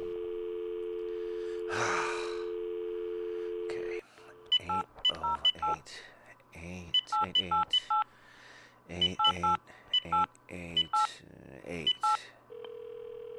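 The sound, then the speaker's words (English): A steady dial tone gives way to a quick run of telephone keypad tones as a number is dialed to reach the legal department of Seawide Mortgage, about a dozen short two-note beeps in uneven bursts, clear, with a brief breathy sound near the start. “I just got off the phone with you, and you gave me this number to contact the legal department.”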